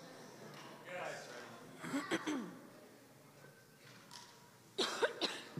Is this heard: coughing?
yes